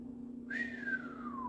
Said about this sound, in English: I whistled.